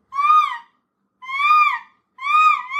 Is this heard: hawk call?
yes